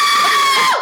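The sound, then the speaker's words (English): A person imitates a scream with a single loud, shrill, sustained cry that stays steady for most of its length before sliding down in pitch and cutting off. “I was like, I'm going to finish saying that … is going to scream like cue”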